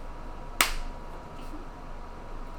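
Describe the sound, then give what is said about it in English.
A single sharp slap of hands, a person slapping their own hands together to signal agreement, a crisp percussive crack that fades quickly into a faint background hiss, with no talking. “But they heard this me slapping on my hands.”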